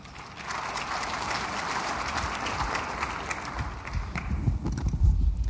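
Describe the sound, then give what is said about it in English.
An audience applauds Zhu Min, who is about to take a senior position at the IMF: a dense crackle of many hands clapping at an even level throughout, with no one speaking over it. “You're also going to have to give Zhu Min another round of applause because Zhu Min is about to go to a very senior position at the IMF, and the world will be a much safer and more interesting and better run place as a result.”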